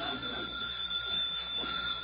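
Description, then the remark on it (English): A telephone rings somewhere in a jam-packed living room with a steady, high, buzzing tone that carries through the whole two seconds, with a faint murmur of other sound underneath. “Will you please answer the phone?”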